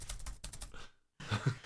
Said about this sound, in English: Keyboards don't like being punched with fingers.